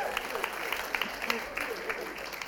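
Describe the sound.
An audience applauds, a steady, dense patter of many hands clapping that holds at an even level for a couple of seconds, with some voices mixed in.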